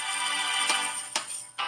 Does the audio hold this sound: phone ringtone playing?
yes